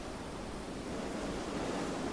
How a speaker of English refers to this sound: Take a few more deep belly breaths and focus on the sound of the water and wind as you travel the world in your extraordinary boat.